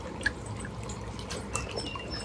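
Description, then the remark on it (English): Soft, steady water lapping and trickling, a gentle continuous wash with small splashy accents, plus a few faint, brief high bird chirps scattered over it. No one speaks. “So grateful for the birds in the water lapping.”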